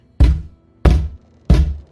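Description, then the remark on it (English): Three evenly spaced knocks on a door, each a solid, low, hollow thud with a short decay, steady and unhurried, with no voices or other sounds between them. “And then she will knock politely on the door.”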